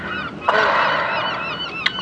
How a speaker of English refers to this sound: By the pier, eating chips. Being attacked by gulls.